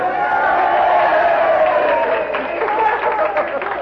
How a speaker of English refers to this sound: A big roar of applause.